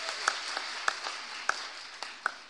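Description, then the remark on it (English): An audience gives a man a clap after a shouted amen, a soft, steady wash of clapping with a few sharper claps standing out at roughly even intervals. “Give him a clap and sit down.”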